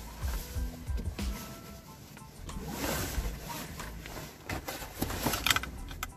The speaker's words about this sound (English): Alright. Let me put my seatbelt on.